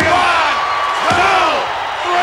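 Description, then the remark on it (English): A heavy body slam thuds onto a wrestling ring mat amid a loud, roaring arena crowd, with cheers and shouts swelling around the impact. “Look at that shot. Razor's edge. Love it. Oh. He ain't getting up from that.”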